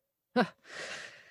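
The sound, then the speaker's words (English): A single sneeze: a brief voiced intake, a short pause, then a long breathy, hissing burst that trails off over about a second, moderately loud with no talking. “Bless you.”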